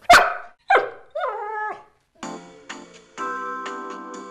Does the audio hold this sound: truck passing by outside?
no